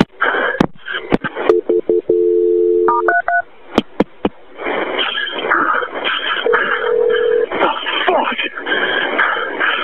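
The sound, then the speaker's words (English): Over a phone line during an emergency call being transferred to the fire department, a steady tone and sharp clicks give way to quick keypad beeps, then a brief ringing tone sounds under muffled, overlapping talk. “Let me get the fire department on the phone to help you, okay?”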